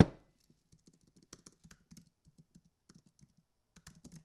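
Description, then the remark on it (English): Quick, uneven clicks of someone typing on a computer keyboard, in short bursts and pauses with no voices. “Look at that typing, baby.”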